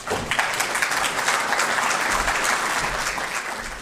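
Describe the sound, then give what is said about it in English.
Steady, sustained applause from a sizable audience at a business plan competition, a dense crackle of many hands clapping at once, loud, holding throughout before easing slightly at the end. “Okay, so I could tell by the applause and the looks and the faces of you folks in the audience”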